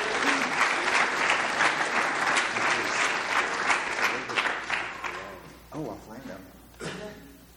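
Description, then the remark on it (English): A crowd at a group meeting breaks into a loud, dense round of applause for the group's secretary as he is brought up. It holds steady for several seconds, then thins out as a man's voice begins speaking over the last scattered claps. “Give him a round of applause, y'all.”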